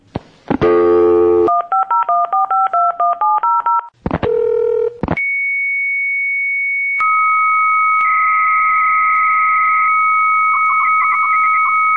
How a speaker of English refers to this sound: There were dial-up modems. You commanded your modem to call a phone number set aside for a specific BBS, and you would hear something like this.